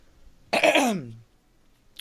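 A single fairly loud throat clearing, a rough burst lasting under a second that trails off into a low rasp, followed by near silence.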